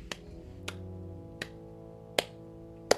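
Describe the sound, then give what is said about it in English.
Five slow, evenly spaced claps ring out one by one, each sharp hit trailing into a reverberant room tone, with no voices present. “Slow clapping filled the echoing room.”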